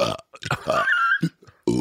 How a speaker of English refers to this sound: What's that little noise before you burp? It's sucking in air. That's amazing. That's just like a fucking horror show.